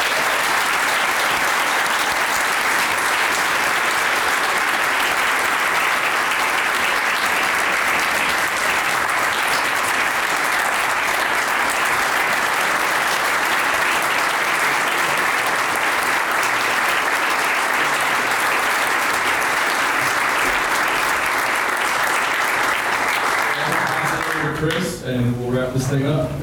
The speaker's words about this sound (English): So let's give a big round of applause for these.